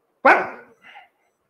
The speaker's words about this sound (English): Again, after some time, another family member of the house again accidentally steps on the tail of the dog. The dog will still bark.